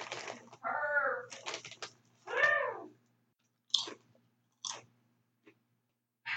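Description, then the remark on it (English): Crunchy chewing of potato chips, loud crackling bites in quick bursts at first, then a few sparser crunches with short pauses between them. No talking. “Sorry if y'all don't like the sound of potato chips. I'm eating them.”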